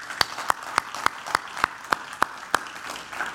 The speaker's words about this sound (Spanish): Denle un aplauso al Señor, vamos. Denle un aplauso al Señor, bueno.